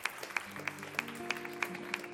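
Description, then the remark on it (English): An audience claps at a church service in a steady, even rhythm, about three sharp claps per second, over a sustained low musical drone. No one speaks. “You can clap for that.”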